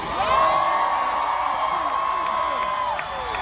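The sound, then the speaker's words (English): A large concert crowd in New York cheers loudly, a dense steady roar of many voices with high whoops and shouts riding on top, holding for about three seconds before easing slightly. “The fucking crowd is amazing.”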